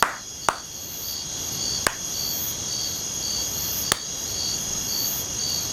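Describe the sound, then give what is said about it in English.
Three sharp, isolated hand claps sound at uneven intervals, each crisp, over a steady bed of loud cricket chirping that fills the background throughout. “Ow, that last clap was just because”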